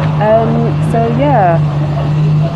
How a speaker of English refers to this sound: Apologies if there's a bit of a noise, I'm on the bus at the moment.